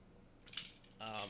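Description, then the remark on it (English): A pair of dice rattles and clicks briefly in a hand, a quiet clatter lasting under a second, followed by a faint voice starting up. “I don't go to my local comic book stores because I've bought like one pair of dice, which are right here, the only thing I've ever bought at a comic store.”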